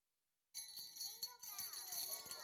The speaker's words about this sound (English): Jingle bells, yes. You know, the bells were always a sign of something great to come. They're called the Christmas bells